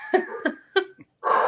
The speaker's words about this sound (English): His name is Champ, which is very fitting. But he's barking at my inflatable Santa Claus that's outside.